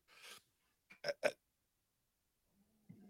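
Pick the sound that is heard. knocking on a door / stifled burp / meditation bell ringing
stifled burp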